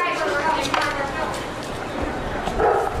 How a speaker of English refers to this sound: Did you hear that? That was Champ. Or maybe it was Major. Anyway, it was one of the president's German shepherds barking at the end of a meeting. The two presidential pups moved into the White House from Delaware.